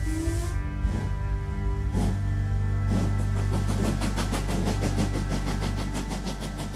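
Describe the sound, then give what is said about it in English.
A train heading towards the Himalayas rumbles along the tracks with a steady low engine drone, its wheels clacking over rail joints in a few spaced beats that quicken into a fast, regular clickety-clack. “She gets on a train with the Swami, heading towards the Himalayas.”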